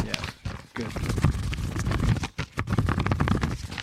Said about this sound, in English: And let's shuffle papers.